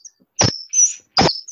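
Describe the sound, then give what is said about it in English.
A person in a studio imitates a bird with three quick, high, squeaky chirps, fairly loud, separated by brief gaps, with no talking. “There's a bird loose in the studios.”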